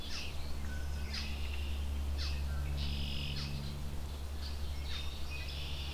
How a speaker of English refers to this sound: Lots of red-winged blackbirds, including some juveniles, it sounds like.